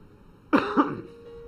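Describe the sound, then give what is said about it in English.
Two quick coughs in succession, short raspy bursts with a slightly throaty edge, moderately loud, followed by quiet. “I'm trying to learn how to cough.”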